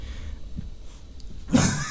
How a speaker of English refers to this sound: excuse me. Is there a cough button?